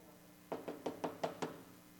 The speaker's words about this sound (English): Ziba showed up at the doorstep of Mephibosheth and knocked on his door.